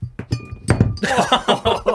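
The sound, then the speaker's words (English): A table gets knocked over when someone tries to catch it: a few dull thunks, then a second of busy clattering and clinking as things tumble and rattle, fairly loud throughout. “But then I tried to catch it, and that's what knocked it over.”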